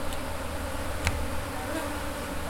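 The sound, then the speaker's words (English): A steady, dense drone of many honeybees buzzing around a backyard beehive, continuous and even, with one brief sharp tap partway through and no voices. “They do the typical buzzing around business.”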